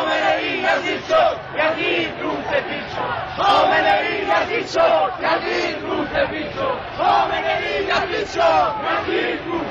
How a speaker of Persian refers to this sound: به همین دلیل مردم خشمگین هستند و این خشم از شعارهایی که سر می‌دهند پیداست.